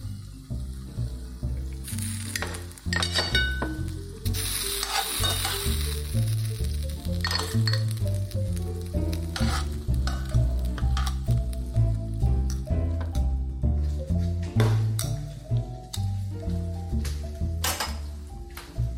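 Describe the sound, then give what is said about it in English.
Thick, creamy pasta sauce sizzling in a pan while being stirred, the sizzle rising in pitch as the water is nearly gone, with wet squishing sounds and occasional clinks of a utensil against the pan, steady throughout. “Okay, the sound has already changed. Higher pitch because the water is basically gone.”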